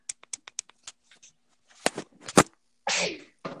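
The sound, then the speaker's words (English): A few light clicks and sharp intakes of breath build up to a single loud sneeze, followed by a brief quiet snuffle. “Okay, so let me sneeze. 1 second. I gotta sneeze.”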